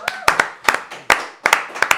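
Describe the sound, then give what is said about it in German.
Sparse audience clapping in a small room at the Kessel TV Radio Show: sharp, crisp hand claps arriving in loose pairs every half second or so, moderately loud, over a faint murmur of voices. “Danke, nochmal Applaus, bitte.”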